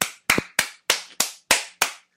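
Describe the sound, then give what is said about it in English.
Seven sharp, crisp slaps land one after another in a quick, steady rhythm, each a bright smack that fades fast, with no talking. “That was 19 slaps.”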